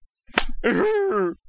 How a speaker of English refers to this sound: Did you slap your own knee? Yeah, I did.